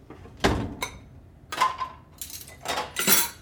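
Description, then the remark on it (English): Metal cutlery and dishes clatter and clink in a series of sharp bursts as utensils are loaded into a dishwasher rack, with a faint rattle of the rack sliding. “Can we do the dishes? Sure. All we have to do is load a machine.”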